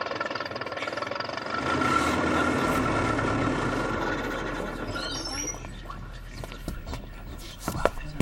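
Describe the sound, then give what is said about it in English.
A bus pulls up with a steady engine rumble that settles into a low idle, broken midway by a few short, high brake squeals and some faint clanks near the end. “I stood next to an evil-looking fellow and was greatly relieved to see the bus arriving a few minutes early.”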